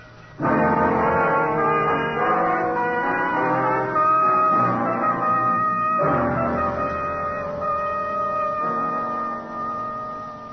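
An ambulance siren blares steadily, a loud, rich horn-like tone that holds its pitch and shifts abruptly a few times, easing slightly toward the end, with no voices.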